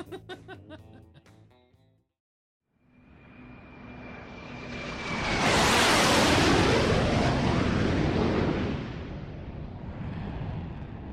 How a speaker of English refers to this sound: So what is that? That's a very low flying jet.